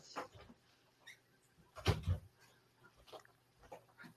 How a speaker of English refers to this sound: My dog wants out the door. It's okay. Door open.